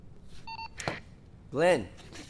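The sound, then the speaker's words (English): A single short telephone keypad tone beeps, followed by a sharp click and a brief, muffled vocal sound against quiet background noise. “Who are you calling?”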